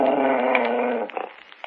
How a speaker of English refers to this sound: I'm sorry, gentlemen. It seems that my dog has been scratching at your door again.